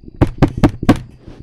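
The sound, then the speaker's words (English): Four quick, sharp knocks in a steady rhythm, fairly loud, rapped on a hard surface, followed by a brief quiet tail. “Are they knocking?”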